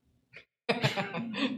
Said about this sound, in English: We got a crowd sneeze, everybody.